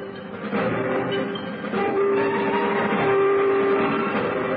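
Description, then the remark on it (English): A steam train rumbles steadily past, a dense chugging roar, while a train horn sounds in two sustained blasts over the noise. “In the afternoon, the telegram arrived for Holmes, and he made a great display of regret at having to leave Beaumont's by the evening train.”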